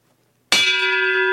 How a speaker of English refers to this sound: The bell tolls for them.